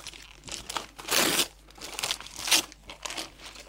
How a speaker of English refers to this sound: Do you want me to open this? You can open it now. I was just going to give you your present as soon as I next saw you.